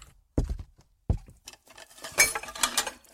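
An emptied drinking glass dropped into a sink: two dull knocks, then a stretch of rattling, ringing clinks and clatter that peaks twice before settling, with no voices.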